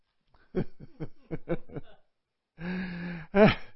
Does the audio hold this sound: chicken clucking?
no